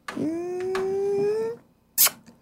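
A novelty cup plays one long, steady cat meow that rises gently in pitch for about a second and a half, then stops, followed by a brief sharp click. No one speaks.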